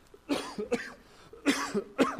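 A man fighting a slight cough coughs in two quick double bursts, moderately loud, with short pauses between them and no talking.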